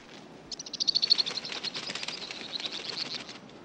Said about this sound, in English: But he's just sitting there listening carefully. But all he can hear are birds.